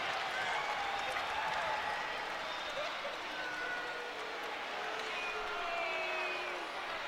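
A roaring basketball arena crowd cheers steadily for several seconds during a college game on the Blue Raider Network, after a basket by Leonard makes it 47-37 with 15:22 left and coach Nick McDevitt gets the crowd up; a dense wash of shouting and clapping with scattered whistles and higher yells rising above the constant din.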